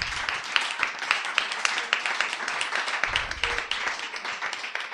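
An audience applauds steadily, a dense wash of many hands clapping at once with sharper individual claps standing out, holding at a fairly even loudness throughout.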